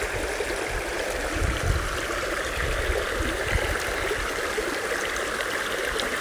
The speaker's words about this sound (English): We take in all the good feelings of the air in this forest next to the stream.